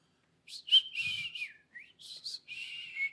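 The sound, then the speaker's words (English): A brief whistled tune of several quick, wavering notes with gliding pitch, rising and falling in a few short bursts, heard on its own at modest volume without any talking. “After searching, looking around for a little bit, you hear a little whistle.”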